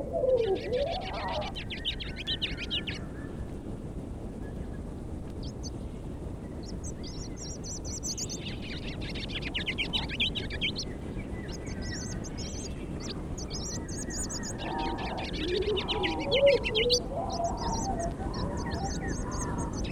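A ruby-crowned kinglet sings a high, thin warbling song in repeated bursts and phrases, fairly faint, its warble ending with two phrases like a Carolina wren, over a steady low rumble of background noise.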